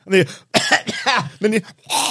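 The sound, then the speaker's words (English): A person vocally imitates a fit of coughing among passengers on a bus: about five rough, voiced hacks in quick, uneven succession, fairly loud, with no other talking. “And it was like a plethora of coughing.”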